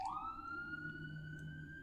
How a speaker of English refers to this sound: Oh, you hear the fire truck going by? Oop.